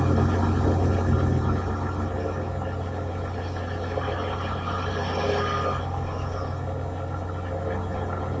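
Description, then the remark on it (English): An old police car's engine runs steadily throughout, a constant low rumble with a droning hum and some rattling road noise, unchanging in loudness. “He's driving an old policeman's car.”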